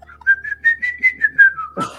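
A person whistles a short tune of about seven pulsing notes at a steady rhythm, clear, ending abruptly in a brief noisy burst.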